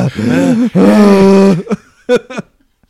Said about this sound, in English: I'm breathing very loud right now. And you should at least acknowledge yeah, that. Yeah, exactly. Louder and louder.